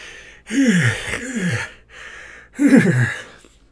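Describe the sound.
A voice imitates the heavy, ragged panting of an exhausted character catching his breath: three loud breathy gasps with falling pitch, separated by a softer breath, no words spoken.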